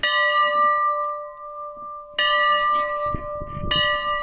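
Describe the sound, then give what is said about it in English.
A church bell, a replica of the church's original 1899 bell, outside St. Michael's Church in Cooks Creek, tolls three times at uneven intervals, each strike loud, its rich metallic tone ringing on and overlapping the next, with faint outdoor rustling beneath. “This bell is a replica of the original bell that was built outside our church in 1899.”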